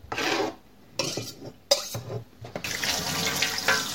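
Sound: tap water running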